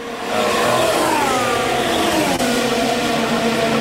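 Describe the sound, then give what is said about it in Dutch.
A loud Ferrari Formula 1 car engine accelerates steadily, its high-pitched whine rising through the gears with a brief dip partway through, sustained without any talking. “Hier is die Ferrari heel goed. Je trekt die in de eerste paar honderden meters gewoon weg.”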